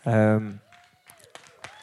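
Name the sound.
sparse applause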